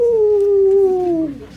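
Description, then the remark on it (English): A dog lets out one long, mournful whining moan, a steady tone that slowly sinks in pitch and fades at the end. It is fairly loud, with no other sounds around it. “Listen to the moan of a dog for its master. That whining is the connection.”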